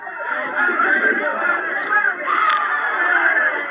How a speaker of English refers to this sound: That is the crowd. That is the crowd cheering. If you can hear me over them, there is just dozens of people here, all with their phones, all waiting for a glimpse of the former president.